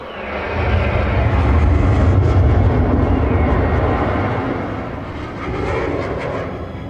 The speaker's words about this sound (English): Appearing from our right, Air Force Thunderbirds suddenly shoot past us, leaving a trail of white exhaust.